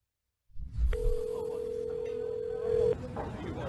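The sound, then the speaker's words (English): A phone's ringing tone as an older man calls his son from a Starbucks: one steady, unbroken electronic beep lasting about two seconds, clear and fairly loud over a low rumble of background noise. “It's an older gentleman calling his son on his phone.”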